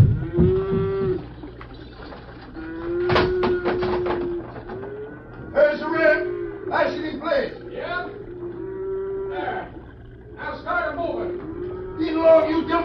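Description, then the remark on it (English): Many cattle moo repeatedly as they are herded onto a bridge and held there, long drawn-out lowing calls overlapping from several animals, with a rumbling background of hooves and movement throughout. “They're moving those critters onto the bridge and holding them there.”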